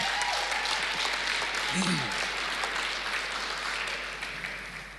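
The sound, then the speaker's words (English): A church audience applauds themselves in a dense, steady round of applause that stays loud for several seconds, with a few scattered voices and cheers mixed in, before beginning to fade toward the end. “Can you guys give yourselves a round of applause?”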